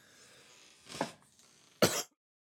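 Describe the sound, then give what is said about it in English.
Two harsh coughs, a smaller one followed by a louder, rasping burst, with a faint hiss of background noise between them and silence after. “As I cough now, I'm just talking about it. I'm coughing.”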